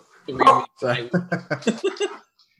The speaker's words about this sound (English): Well, the dog has to announce that my wife's home. Can you get her out of here?